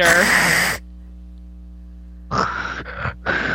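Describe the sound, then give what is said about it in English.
Someone imitates heavy, raspy, Darth Vader-like breathing, mimicking a man breathing in photos: one long hoarse breath, a brief silence, then three quick rasping breaths in a row. “Like, I feel like I could like hear him breathing in those photos, being like, "Come on, Brittany."”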